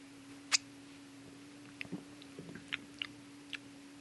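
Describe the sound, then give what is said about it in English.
Someone tastes a clear, bubbly fizzy drink: a handful of small, irregular mouth clicks, lip smacks and faint crackles spread across a few quiet seconds, with a low steady hum beneath and no talking. “All right, give it a taste. Still, it's kind of like Alka-Seltzer.”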